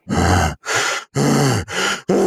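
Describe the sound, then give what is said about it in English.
A voice imitates the excited heavy breathing of bow hunters as turkey gobblers approach: five loud, raspy, gruff breaths in a quick, steady rhythm with brief gaps between them. “And I have sat there and we've had a video camera going, and you can listen to these guys as these gobblers are getting closer, and you can hear their breathing just go.”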